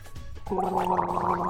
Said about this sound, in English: clearing his throat